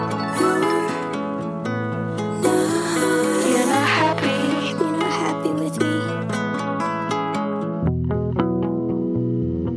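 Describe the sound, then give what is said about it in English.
A dense, effects-heavy song with rippling arpeggiated notes and echoing, distorted textures, playing loud and steady before thinning into sparser repeated tones near the end. No one speaks. “You're going to want to hear the painstaking intentionality behind every echo and arpeggio on these tracks.”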